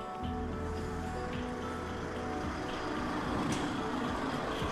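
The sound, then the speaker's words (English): A heavy engine rumbles steadily, a deep low droning with a hum that builds slightly as a big truck bringing in boats arrives at the Grand Canal Dock Basin, heard without any talking. “Oh, sounds like a truck.”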